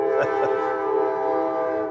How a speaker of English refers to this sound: Sounds like my ride's showing up here. So yeah, 310 to Yuma. I was thinking, there's a train coming.